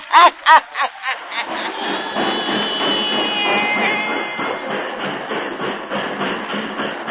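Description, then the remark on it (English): A train at a little railway depot in Louisiana rumbles and hisses, opening with a few sharp chuffing bursts and then settling into a steady, rhythmic clatter with a faint high squeal. No one speaks. “outside a little railway depot there begins our yarn about Graveyard Mansion”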